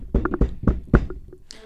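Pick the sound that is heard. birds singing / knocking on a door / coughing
knocking on a door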